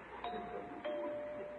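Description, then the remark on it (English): A visitor at the door rings a doorbell, which chimes twice in quick succession, each strike leaving a bright, sustained ringing tone that lingers over faint background hiss. No one speaks. “Why does he ring the doorbell after I left him that note?”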